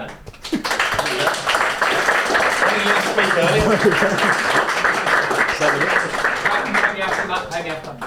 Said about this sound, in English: thank you, gents, we really enjoy the podcast, hence why we're all here, and a bit of a round of applause.